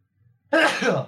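A single loud, explosive sneeze bursts out suddenly after a moment of near silence, harsh and breathy, then trails off quickly.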